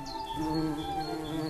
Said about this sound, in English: Hum of bees and insects.